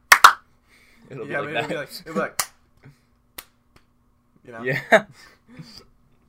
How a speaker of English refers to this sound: I'm looking at the waveform of my recording through my headphones. It picked up your disc slams coming out of my. That just, that sounds like I did 4 desk slams then. Just like 2 were like less as hard.